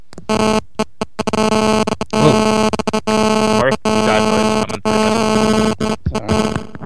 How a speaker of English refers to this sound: Cell phone. Yeah, somebody's cell phone.